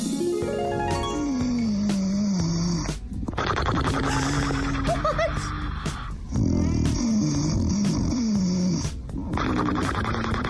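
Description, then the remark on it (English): Loud human snoring: long, rough, rattling breaths in several drawn-out stretches, each broken by a brief pause. No talking alongside it. “We have been trying to find New Zealand's loudest snorer”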